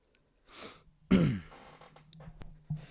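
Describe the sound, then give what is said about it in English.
Wet nasal sniffing from a person with a runny nose who is not crying: a short airy sniff, then a louder snorting one with a throaty rasp, trailing off into faint breathing. No one speaks. “I sniff because I have boogies and I'm not crying.”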